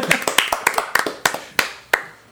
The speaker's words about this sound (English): whereas this I've actually watched on my own, so I think I deserve a round of applause.